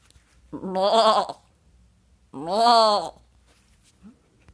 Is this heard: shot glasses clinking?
no